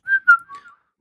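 A person whistles a short, quick run of a few bright notes that slide slightly in pitch, clear, with no talking around it.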